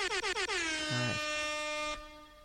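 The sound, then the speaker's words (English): A loud air horn sound effect blares in several quick staccato blasts before settling into one long sustained honk that cuts off sharply, heard alone. “insert air horn sound effect here.”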